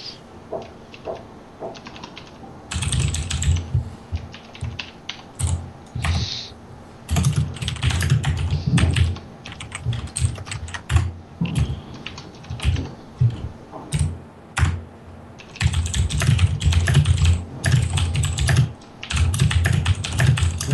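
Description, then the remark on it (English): Rapid, forceful typing on a computer keyboard, a dense clatter of clicks and thuds in bursts with brief pauses, the keys striking hard and loud throughout. “Sounds like someone's angry typing. No, that's just my keyboard.”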